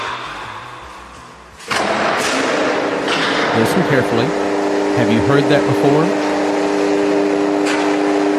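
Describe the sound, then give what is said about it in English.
Heavy subway bomb shelter blast doors closing: a sudden loud mechanical onset gives way to a steady, humming motor drone that runs to the end, with a man talking over it. “Americans have never heard this sound before, because this is the sound of subway bomb shelter doors closing.”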